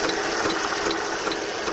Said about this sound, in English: This mini computer chip manufacturing plant is a test facility. Located in a warehouse on the University of Arizona campus, it's where engineers recreate the industry's water problems so they can fix them.